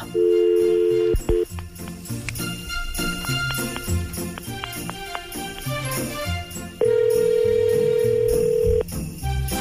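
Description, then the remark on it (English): A short steady telephone tone, then a busy stretch of tinkly electronic sounds like dialing over background music, followed by a single long, loud ringback tone of about two seconds, as an outgoing phone call is made to a listener. “Okay, so normally we're telling you our phone number, but we have got yours, and we've been telling you, be by your phone, because we are making this phone call now.”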